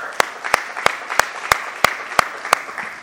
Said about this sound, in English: All right, if you're awake, clap your hands this morning.